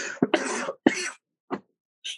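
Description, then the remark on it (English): A congested person coughs several times, two harsh, hacking bursts followed by a weaker cough and a faint breathy rasp, with short pauses between them and no talking. “Can you ask them to give you some relief for this coughing?”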